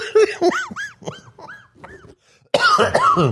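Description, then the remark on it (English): A run of harsh, hacking coughs in quick succession, several bursts over a couple of seconds, then a brief pause before a louder, rougher fit of coughing with a raspy throat; a recurring hacking cough that returns at this time of year. “Just got that good old hack that I always have.”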